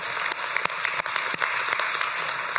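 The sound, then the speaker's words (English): A crowd applauds steadily, many hands clapping in a dense, continuous patter that stays at an even loudness throughout, with a few sharper individual claps standing out. “Yeah, you can clap.”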